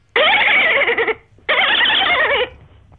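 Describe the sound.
A person imitates a dolphin with two loud, high, warbling squeals, each about a second long and wavering up and down in pitch, separated by a short pause.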